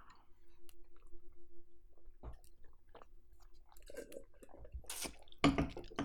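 Someone slams a glass of beer in a run of wet, rapid swallows and slurps, with a soft steady hum underneath and a sharper, louder burst of gulping at the end.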